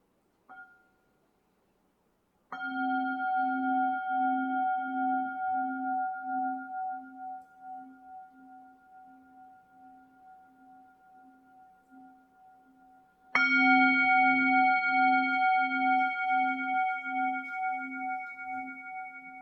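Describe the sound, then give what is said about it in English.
A meditation bell is invited three times to begin a brief guided meditation: a soft first tap, then two full strikes whose bright, layered tones hum and pulse as they slowly fade. No one speaks. “And so I'm going to invite the bell three times and guide us just in a brief drop-in to coming back to our home within.”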